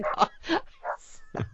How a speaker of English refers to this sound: As you hear my dog barking. Is that your wife? Yeah, I think she's come home and the dogs are acknowledging that.